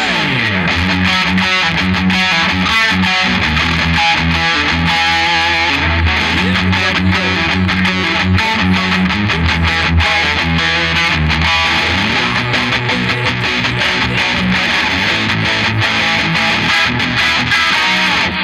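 A music track from a playlist plays loudly and continuously, with dense, gritty, distorted-sounding instruments and steady sustained chords filling the whole stretch. No one talks over it.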